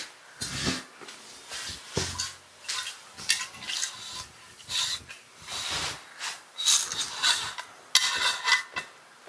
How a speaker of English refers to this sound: And he'll be back soon. Let's pour him another drink.